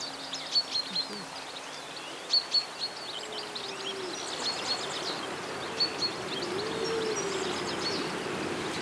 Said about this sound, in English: Well, I hope that somewhere on this recording I've got a cell bunting. You've certainly got loads of other birds. Yeah, certainly.